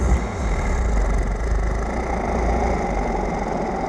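A deep, guttural growl rumbles low and steady for about four seconds, a constant, fairly loud drone with no breaks and no voices over it.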